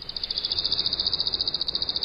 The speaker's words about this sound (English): And worm-eating warbler, regular speed.